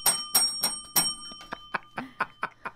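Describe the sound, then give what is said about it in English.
A big bell rings out in a rapid string of about ten strikes, loud at first, then lighter and quicker, with a steady metallic ring hanging underneath. No one talks. “Oh, Pearl gets the big bell, the t-shirt.”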